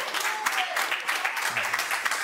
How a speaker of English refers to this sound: Can you give God a hand clap of praise?